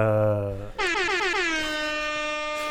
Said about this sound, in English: Rap air horn for Godzilla. Godzilla!